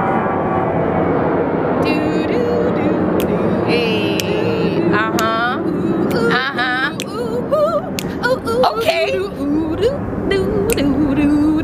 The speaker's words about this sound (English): Hold for plane.